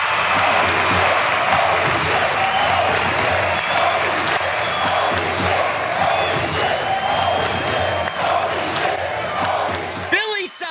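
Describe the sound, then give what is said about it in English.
A crowd cheering and applause sound effect played on a live show for a super chat: a loud, dense crowd cheers and claps continuously for about ten seconds, a roaring wall of applause and shouting that cuts off abruptly near the end. “We got where's my crowd here, man?”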